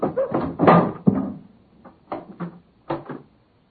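A door being worked open by its keeper: a cluster of wooden thumps and rattles, then a few lighter knocks spaced apart, with no voices.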